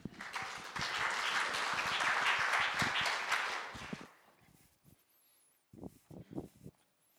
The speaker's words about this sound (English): Thank you, sir. I'd just like to point out, I got a round of applause before Pastor Fred did, so that's pretty cool.